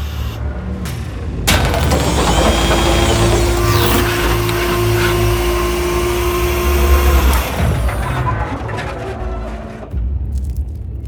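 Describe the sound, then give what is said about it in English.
A spaceship door opens with a loud mechanical whir and hiss over a steady low hum, lasting several seconds before winding down into a fading rumble. No one speaks. “A door on the craft is opening.”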